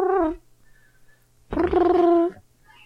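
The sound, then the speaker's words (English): A phone set on a table rings on speakerphone after a number is dialed. There are two buzzy, tonal ring bursts separated by about a second of quiet, the second one longer. The ringing is fairly loud, with no one talking. “It's ringing. Yeah, we can hear it. It's on speaker.”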